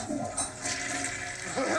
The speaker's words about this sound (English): Something about the sound of the toilet flushing and then a man coming out of said bathroom and being like, is so disgusting.